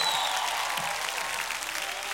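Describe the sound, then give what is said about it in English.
A church audience applauds and cheers when a preacher asks them to make noise during a sermon, a dense, steady wash of clapping that holds at an even loudness throughout, with no clear speech above it. “I need somebody, if you've been in a storm and you've seen that storm ever move you to where God called you to be, I want you to make a little noise in the room right now.”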